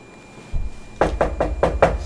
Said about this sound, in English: And that was it for listener contributions, and let's go on and move on to, wait a minute, is that someone knocking?